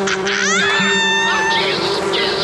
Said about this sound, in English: Buzz, bees, get him. He wants to keep us apart. Get him, my pretties.